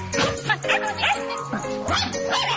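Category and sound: animal, shetland sheepdog barking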